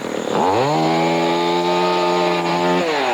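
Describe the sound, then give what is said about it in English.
A chainsaw, Chainsaw Chuck's, in Derby roars up to a steady high-pitched whine, holding a loud, constant buzz for a few seconds before dropping off as the throttle eases. “Not Chainsaw Chuck again.”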